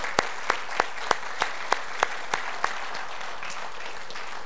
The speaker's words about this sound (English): You're welcome to stand and take a bow. It's not often people clap for you when you're center stage up front.